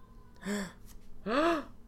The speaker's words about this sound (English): Gasp.